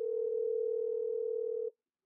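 A steady, continuous phone tone hums at an even pitch for almost two seconds as someone places a phone call, then cuts off abruptly, leaving silence. No voices are heard.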